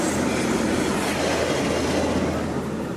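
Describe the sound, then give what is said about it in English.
A short Via Rail passenger train rumbles past on the tracks at the Rouge Hill GO station on the edge of Lake Ontario, a steady loud roar of wheels with faint clickety-clack and a thin metallic squeal, no voices. “That was a very short Via Rail train whistling through on the same tracks here.”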